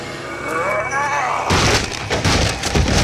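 A great hammer smashes into one of a tavern shack's wooden columns, splitting it in half: after a wavering tonal sound, a loud splintering crack bursts out and rolls into a rough, sustained crash of breaking wood.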